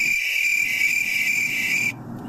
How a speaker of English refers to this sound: I played the cricket sound.